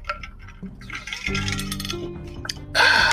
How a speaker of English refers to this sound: Now, excuse me while I hydrate quick.